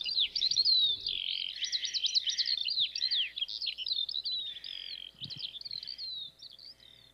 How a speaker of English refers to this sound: Birds.